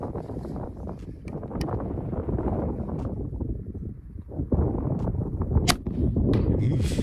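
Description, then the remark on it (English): A single shot from a single-shot breech-block rifle, fired with a set trigger, cracks sharply over steady rushing wind noise, followed by a few fainter clicks and knocks of handling. “I'm gonna use a set trigger, so you pull the rear trigger to set it. Front trigger makes it go off.”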